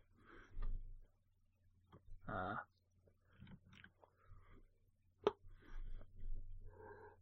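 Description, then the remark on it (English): A person yawns with a drawn-out, breathy, rising-and-falling vocal sigh, among soft mouth noises, breaths and a sharp click, with no one speaking. “Sorry, I'm yawning all the time, and I'm not even that tired.”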